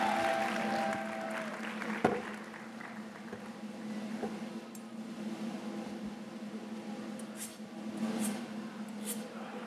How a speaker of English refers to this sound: Come on, give him a round of applause here yourselves.